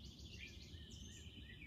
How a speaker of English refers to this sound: The birds are alive and singing.